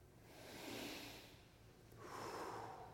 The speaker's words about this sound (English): And more than that, you're taking it into your body and breathing it in and breathing it out and taking God into yourself and giving God back to the world. And along the way, you're adding a little bit of yourself to it. Now take a breath again.